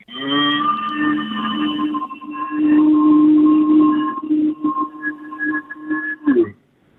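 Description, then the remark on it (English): A caller to The Jimmy and Nath Show imitates a cow's moo for the call of the week, one long, loud, sustained low call lasting several seconds, wavering and breaking up near the end before cutting off, with a slightly echoey quality. “Can you give us your biggest, loudest, longest moo, mate?”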